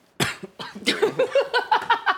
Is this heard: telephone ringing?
no